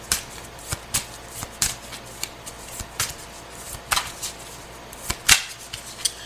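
Tarot cards are shuffled for a tarot reading for Gemini, in a quick run of crisp, papery flicks and snaps, irregular sharp bursts over about six seconds with a faint low hum beneath and no talking.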